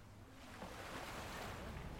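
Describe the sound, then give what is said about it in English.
Steady water washing against the shore of the river Tagus, with a broad, even rush of gentle waves and a touch of breezy noise, continuous without any voices. “we've come right down from the high spot where we began this section of our conversation, right down to the shores of the river Tagus”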